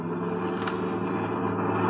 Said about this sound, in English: Hold on, Sheriff. We're going around the bus. Then we're going to roll.